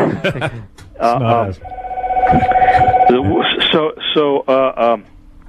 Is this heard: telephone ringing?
yes